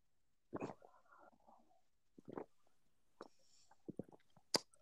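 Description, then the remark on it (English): Several short slurping sips of a drink, loud and wet, spaced out with brief pauses between them and no one talking. “And if you know anything, you know, gotta go in sip without listening to some bald asshole loudly sip a drink.”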